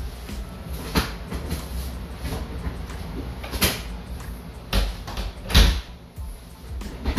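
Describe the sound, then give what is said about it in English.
A door is pushed shut with a few clunks and a firm thud near the end, amid shuffling and handling noises in a small room. “I was just shutting the door.”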